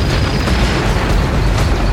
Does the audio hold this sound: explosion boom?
yes